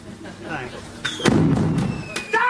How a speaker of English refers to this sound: Ah! Ooh, fireworks.